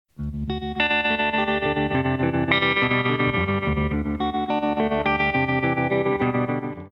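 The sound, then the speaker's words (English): A hollow-body electric guitar played through a Fender Deluxe Reverb tube amp plays warm, sustained, strummed chords with a shimmering, wobbly modulation and echoey tail, steady and fairly loud throughout, with no voices. “But it also is just a hollow body guitar through a Fender Deluxe Reverb, which again, does it matter?”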